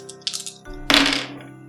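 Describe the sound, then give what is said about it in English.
Dice, including a plot die, an attribute die and a regular die, rattle and clack across a hard surface: a few quick light clicks, then a louder burst of clattering that tumbles and fades within about a second, over a steady low hum. “Which is why I'm going to use this this plot dice, to make it really hurt.”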